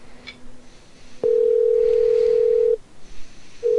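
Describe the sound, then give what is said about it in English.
A telephone line rings: a steady, mid-pitched electronic tone holds for about a second and a half, falls silent briefly, then starts again, with faint background hiss and no voices. “I like the part of the show where the phone.”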